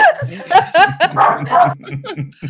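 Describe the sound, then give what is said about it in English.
A dog barks in a quick run of sharp yips, several in a row over a couple of seconds, loud and irregular, with a low hum underneath. “Hold on. Let me get my doggy.”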